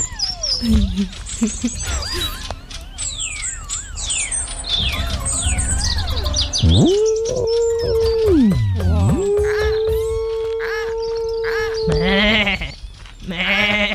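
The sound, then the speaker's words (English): A sheep lets out two long, drawn-out bleats, loud and wavering, with a shorter bleat at the end, following a stretch of busy chirping birdsong. “Oh yeah, the sheep.”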